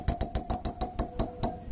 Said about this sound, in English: We spin the wheel. I think we should still spin the wheel. Yep, for the joke. There we go.